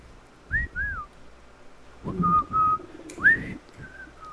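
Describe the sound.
Someone whistles the Andy Griffith tune, a short, halting melody of several gliding notes, pausing between phrases, with breathy low rumbling underneath. The whistling is moderately loud.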